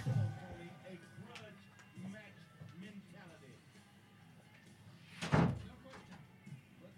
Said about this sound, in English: I'm just going to go grab the door because Tom left the door open